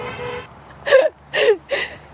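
Car horns toot three times in quick succession, short bright honks from passing traffic, fairly loud and close, with a fainter steady tone before them.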